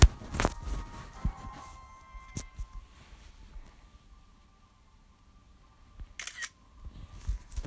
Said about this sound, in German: Foto gemacht.